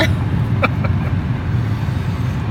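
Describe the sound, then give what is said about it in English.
A steady, low road rumble fills the cabin of a moving car, with a couple of faint ticks or rattles briefly cutting through early on. No one speaks. “Hey, look, they really are in their car. They're not in a studio.”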